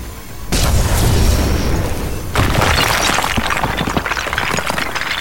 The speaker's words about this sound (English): Focusing my surging pain into a blast of harrowing nightmare, I smashed open the transparent floor.